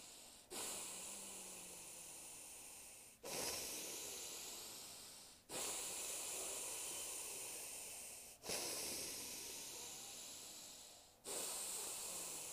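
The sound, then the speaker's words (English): Slow, loud nasal breathing, shown as a demonstration of the nose-breathing technique: about five long, hissy breaths in a steady rhythm, each lasting a couple of seconds with brief pauses between, and no talking. “so I'm going to demonstrate again the nose breathing and then the mouth breathing as well.”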